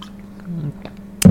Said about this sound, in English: my throat's kind of getting a little dry. Let me swallow this water.